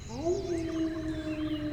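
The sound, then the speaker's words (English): A person imitates a wolf howl: one sustained vocal note that swoops upward, then holds steady and fairly loud for under two seconds, with a faint hiss behind it. “The moment we step in, I just immediately shift into a wolf and start howling.”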